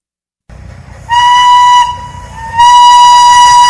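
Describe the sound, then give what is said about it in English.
The House of David steam-powered locomotive 902, fired up and operated at the Michigan Flywheelers Museum in South Haven, rumbles low and steady, then sounds two long, loud, bright whistle blasts, the second held until the end. No one speaks. “For the first time in about 50 years, the House of David steam-powered locomotive 902 has been fired up and operated at the Michigan Flywheelers Museum in South Haven.”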